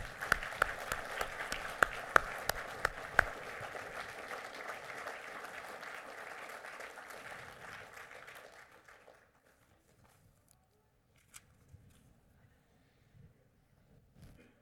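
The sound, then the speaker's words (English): An audience at Crosspointe Baptist Church applauds the men in front in a full, steady burst of clapping for about eight seconds, then the applause tapers off into near silence broken by a few faint stray sounds. “as the Crosspointe gives you applaud one more time, men, you may join your families as we say thank you.”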